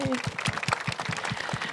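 audience applause

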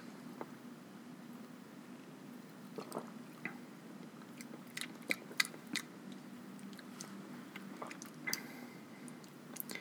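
sipping wine

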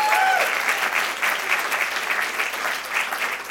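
audience applause

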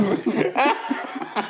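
coughing fit

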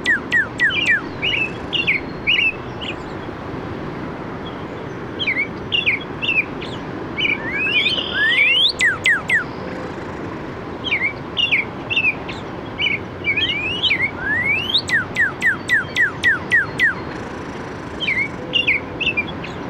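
robin

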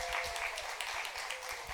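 audience applause and cheering

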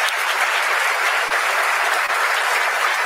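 round of applause

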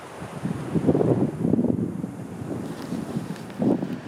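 wind blowing

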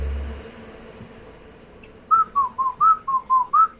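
person whistling

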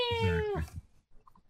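cat meowing

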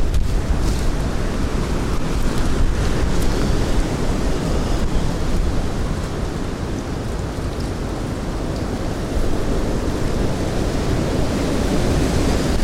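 wind blowing

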